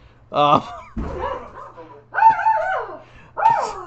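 A dog barks and yips in a few sharp, excited bursts, with high whiny tones between the barks and a low steady hum underneath.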